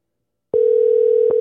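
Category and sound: signal or alarm, telephone dial tone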